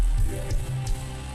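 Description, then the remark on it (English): A church audience applauds God, a loud, dense wash of many hands clapping at once that holds steady throughout without any voices cutting in. “If you believe that all over the room, just give God a big old round of applause.”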